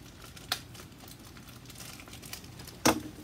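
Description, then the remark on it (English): Crinkling and rustling of Fantasy Bros player sticker sheets being unpacked and handled, with a few sharper crackles and a louder snap near the end, and no voices. “Gonna bust out all them player stickers, babe.”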